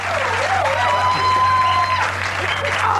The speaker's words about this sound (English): Oh, isn't that nice? Aren't they sweet? Yeah. Aren't they sweet to applaud and cheer like that?